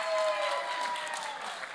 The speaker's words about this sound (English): Give him a clap. Give him a clap.